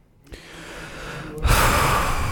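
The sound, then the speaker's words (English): A deliberately exaggerated, loud breath: a long rising inhale followed by a heavy, noisy exhale, with no talking. “Loud breathing.”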